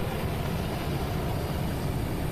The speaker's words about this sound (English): That sound you were hearing in the background was the surf life-saving chopper, or helicopter, that patrols the beach and just keeps an eye out and makes sure everyone's enjoying their summer safely.